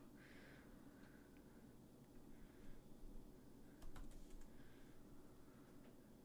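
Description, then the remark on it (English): Quiet, irregular clicking of keys on a computer keyboard, with a few sharper taps near the middle, set against a low steady background hum and no talking. “Oh, I'm typing in the wrong.”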